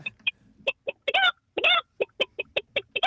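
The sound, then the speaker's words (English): A caller on the phone does a chicken impression: a quick, uneven run of short, sharp clucks with a couple of longer, drawn-out squawks in the middle, fairly loud, with no other talking. “Apparently, you can do a good chook.”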